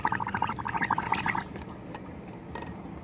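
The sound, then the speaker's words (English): A quick run of bubbling, gurgling liquid as someone blows bubbles into an alcoholic drink, lasting about a second and a half before fading into quiet background noise with a faint clink. “Were you bubbles in your alcohol?”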